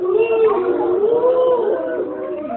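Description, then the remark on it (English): A voice imitates ghosts booing, as part of a Halloween counting rhyme, with a long, wavering, howl-like moan that slides up and down in pitch, sustained and loud for a couple of seconds. “On the 13th night of Halloween, my goblin gave to me 13 ghosts of booing.”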